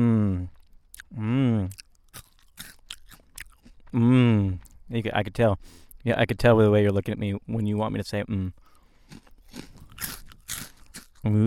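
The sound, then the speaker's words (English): A big crunchy Cheeto cheese puff being bitten and chewed during an interview, sharp crackling crunches repeating throughout while people talk over and between them. “Listening to the crunch, because I have the headphones on right now in this interview, and it's actually really satisfying.”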